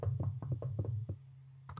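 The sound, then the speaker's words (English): A soft series of knocks on a door, about half a dozen quick raps in an uneven rhythm, fairly muted, ending with one last tap after a short pause. “Well, anyway, the last couple points here was like some people had even reported hearing a gentle knock on their door.”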